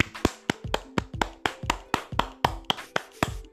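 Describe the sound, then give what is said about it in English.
A steady series of sharp hand claps made with both hands, about three or four per second, crisp with a slight echo, and no voices. “No, that's a clap.”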